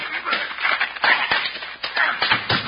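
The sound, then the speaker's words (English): A fistfight: a flurry of sharp punches landing in quick, irregular succession amid shuffling and scuffling, loud throughout as a man is knocked down. “Knock my partner down, will you?”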